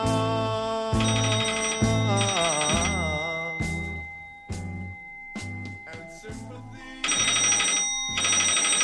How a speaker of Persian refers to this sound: ساعت 6 صبح صدای زنگ تلفن مارگارت و جان رو از خواب بیدار میکنه